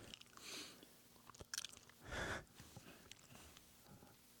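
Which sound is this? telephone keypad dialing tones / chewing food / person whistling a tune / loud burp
chewing food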